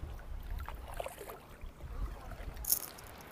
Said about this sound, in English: Is there a boat coming up behind me?